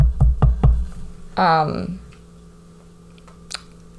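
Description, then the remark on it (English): Three quick knocks on a wooden surface in a short rhythmic burst, followed by a brief moment of someone speaking and then near quiet. “But I better knock on wood.”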